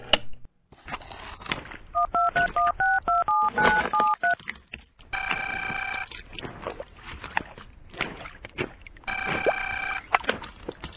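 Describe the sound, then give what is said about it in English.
A rapid run of about a dozen telephone keypad tones as a number is dialed, followed by two loud, sustained electronic ringing or alert bursts over a busy background. “Try the next to next last number now.”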